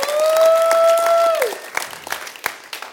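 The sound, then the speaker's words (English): An audience claps and cheers in praise of God, with a loud sustained whistling cry over the first second and a half before it drops off, leaving scattered, uneven claps that gradually thin out. “Let's give God some praise. I want to clap this a little bit.”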